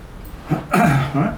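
A few short, rough coughs, a brief one followed by a longer, throaty cough and a smaller one trailing after.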